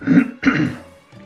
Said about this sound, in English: Well, you know how it is these days with everything is going on with the heat and the weather, so I'll be clearing my throat, I guess. Bear with me. Sorry.